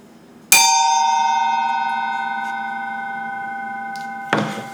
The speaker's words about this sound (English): So this is actually 12 inches. Oh, wow. That's a big bell. So it's a big ice bell.